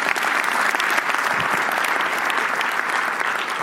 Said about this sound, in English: Go ahead. We can clap. It's good.